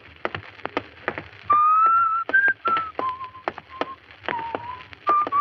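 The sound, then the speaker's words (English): Someone out on a street whistles a simple melody with sustained, clear notes that rise and fall, accompanied by sharp, irregular clicks or taps in the background. No one speaks. “Stop whistling that. It gets on my nerves.”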